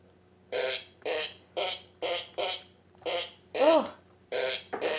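A string of about nine short, buzzy fart-like notes played in a steady rhythm, one bending in pitch, forming a simple melody from a novelty fart-sound keyboard, with no talking.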